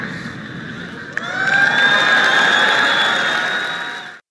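A large audience at the Google I/O conference bursts into cheering and applause, a sudden swell of many voices that rises sharply, holds at a loud, sustained roar with whoops, then cuts off abruptly.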